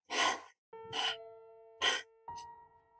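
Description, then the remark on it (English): Harsh, rasping, deep-chested breaths of a large animal come in four heavy bursts somewhere in a room, loud, the last one short. A steady low droning tone hums beneath them between the breaths. “And under the sound of the crackling fire, you hear the rasp of breath, deep-chested.”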